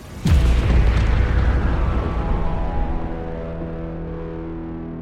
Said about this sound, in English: The next laser beam cut deep into my structure and destroyed one of my auxiliary thrusters. The resulting explosion shocked my entire body.